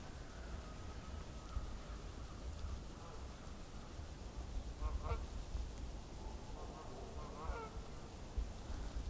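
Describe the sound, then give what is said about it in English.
Canada geese honk repeatedly as a flock of about 20 passes overhead, calls coming in overlapping bursts over a steady outdoor rumble. “So fly over about 20 Canada geese.”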